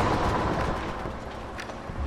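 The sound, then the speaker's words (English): A dense, continuous roar of heavy gunfire and artillery, including recoilless rifles fired from a defended wall at attacking creatures, booming and crackling without pause in a loud, rumbling barrage with no speech. “Past the constant waves of gunfire, I could hear the agonizing screams of dying creatures.”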